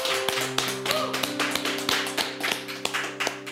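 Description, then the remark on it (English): An audience claps steadily, a dense crackle of many hands at moderate loudness, applauding a pastor's message, while a sustained keyboard chord hums underneath throughout. No one speaks. “Can we give Pastor Nick a big hand and thank him for the message today?”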